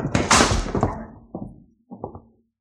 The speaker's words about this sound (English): I'm going to shove them all into this vault and slam the door.